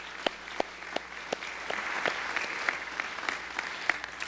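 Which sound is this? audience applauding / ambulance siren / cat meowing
audience applauding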